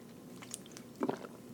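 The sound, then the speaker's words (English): A water bottle cap being twisted shut after a drink: scattered soft plastic clicks and crinkles, then a short, slightly louder burst of scraping, with no talking. “I really just wanted to be dramatic and close my water bottle.”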